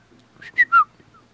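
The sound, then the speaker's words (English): A person whistles a short bird-like tweet, imitating a bird tweeting from a log, three quick chirps in a rising-then-falling high pitch, the last two loudest, followed by a faint trailing peep. “the bird hops down your arm and then hops and flies a little bit over to a log, and it tweets at you.”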